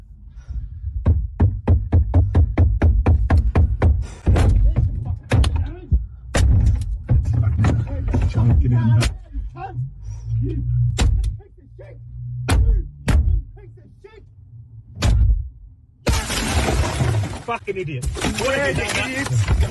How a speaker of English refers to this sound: the boomerang, and he is slamming the guy's mirror, and then he begins to bang the boomerang against the window, and I think that's what scores it and makes it possible for this incredibly muscular guy to break into the car.